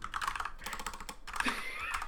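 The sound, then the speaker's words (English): Rapid, furious, continuous typing on a mechanical keyboard, a dense stream of sharp clicky keystrokes, with no voices. “Listen to that mechanical ass keyboard fucking firing away.”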